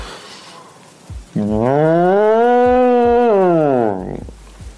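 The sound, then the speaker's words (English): A person imitates a cow with one long, loud, drawn-out moo lasting nearly three seconds, rising and then falling in pitch, with no other talking. “Okay, we have to do an animal impression. With my Chewbacca, not enough. I'm gonna do a cow.”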